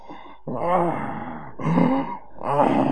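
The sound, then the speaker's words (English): A voice mimics snoring with three drawn-out, rasping groans in a steady rhythm, each rising and fading, fairly loud with brief pauses between them. “You are sleeping while you are snoring.”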